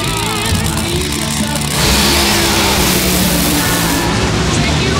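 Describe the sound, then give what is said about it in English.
Nitro Funny Car drag racing engines roar loudly in a final round between a Dodge Charger SRT Hellcat body and a Toyota Camry body, surging into a harsher, louder blast about two seconds in and holding a dense, continuous thunder as the cars accelerate, with a commentator's voice faintly underneath. “This is the final round of Nitro Funny Car and Epic.”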